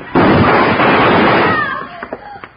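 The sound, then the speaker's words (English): A single loud gunshot, fired by Hickok drawing faster in a shootout, bursts out sharply and rings into a long, rough decay lasting over a second, followed by a few faint, brief vocal sounds as it fades. “I'd have done it, too, if Hickok hadn't been faster on the draw.”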